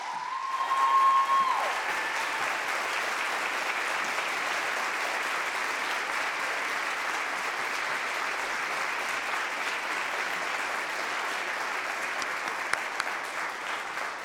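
Sustained audience applause, a dense, even wash of clapping that holds steady for about fourteen seconds, with a brief whistle-like tone rising above it at the very start.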